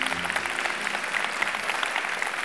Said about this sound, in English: Look at you applaud that. Look at you applaud that.